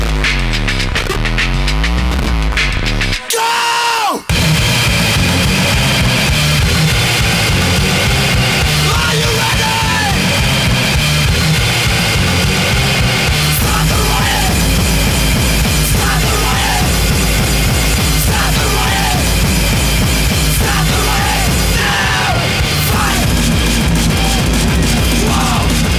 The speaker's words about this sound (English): you've got these thrash metal samples, but then you've also got the big distorted 909 kick and just like screaming about killing fascists or whatever.